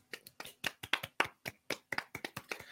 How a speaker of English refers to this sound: Round of applause, everyone.